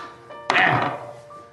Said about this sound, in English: Can you roll a D20 for me, please?